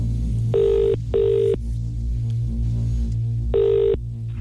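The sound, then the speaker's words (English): An outgoing call's ringback tone: a double burst, a pause, then another burst starting the next double ring. The tone sounds clear and steady over a constant low hum, with no one speaking. “Let's try them again. Fingers crossed they've got a signal. Oh, my God, it's ringing straight away.”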